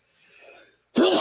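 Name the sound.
a person sneezing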